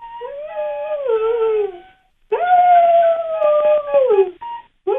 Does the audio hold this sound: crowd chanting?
no